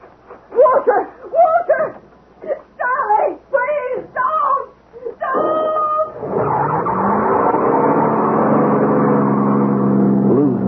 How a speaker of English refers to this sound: Drowned by the roar of the engine.